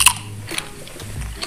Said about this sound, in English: Oh. That's someone crunching on chips for sure. I know some people hate the sound of people eating. That's going to trigger some people for sure.